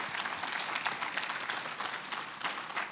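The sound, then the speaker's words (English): A crowd claps hands in praise, a dense, steady wash of many overlapping claps with crisp bright attacks, sustained at an even level for about three seconds with no voices. “If you know that he still knows your name, I want you to give him a hand clap of praise.”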